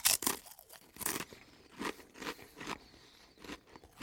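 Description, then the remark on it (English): Loud crunching of thick Ultimate Barbecue Ribs flavour potato chips, a series of sharp crackly bites and crisp chews in an uneven rhythm, with no talking. “They are open and they are thick. This is the ultimate barbecue ribs.”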